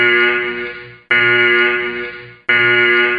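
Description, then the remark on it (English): A loud, harsh klaxon warning horn blares out over an Air Force base after the alarm system malfunctioned, in three long bursts separated by brief gaps, each blast buzzing with dense harmonics and fading slightly before the next. No one speaks. “They started firing shots, the alarm system malfunctioned, and a what's called a klaxon, so basically a loud warning horn, just started to ring out over the base.”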